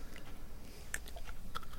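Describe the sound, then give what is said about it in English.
Quiet crunching as someone munches on dark cookie bits coated in white chocolate, a handful of sharp, crisp crackles at irregular intervals over a soft low background, with no talking. “He's going for the munch.”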